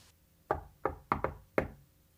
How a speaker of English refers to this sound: Oh, no, you can just knock. Yeah. Okay, let's knock.